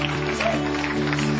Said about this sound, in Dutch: Let's give a hand